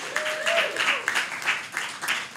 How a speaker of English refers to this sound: So massive round of applause for them as well.